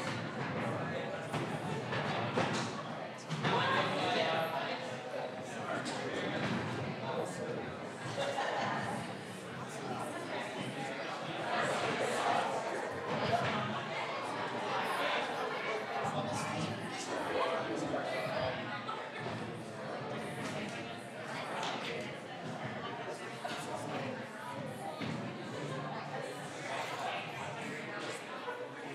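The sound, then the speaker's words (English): A roomful of people chat at once in overlapping conversations while forming small groups of three to five, with scattered knocks and scrapes of chairs being moved around as the crowd shifts into the groups. “So but find your people, 3 to 5.”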